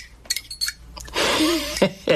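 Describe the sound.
A few sharp metallic clinks of silverware knocking together, tied to Petey Green stealing silverware at the White House, ring out in quick succession before a voice starts talking over the rest.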